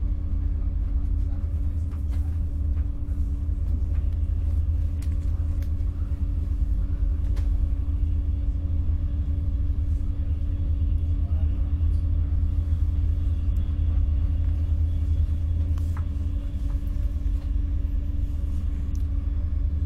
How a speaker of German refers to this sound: Und ich höre aber gleichzeitig auch den Zug.